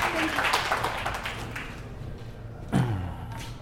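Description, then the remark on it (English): An audience claps together in a dense burst of applause that gradually thins out and fades, with a low thud and faint voices near the end. “You guys give them a big round of applause.”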